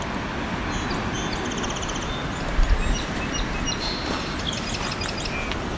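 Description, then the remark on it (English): A song sparrow sings by a shoreline bay, a series of bright high notes and buzzy trills rising over a steady rush of wind or water, with a brief low thump midway. “That's a song sparrow.”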